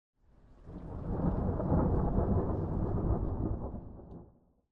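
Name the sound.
thunderstorm with rain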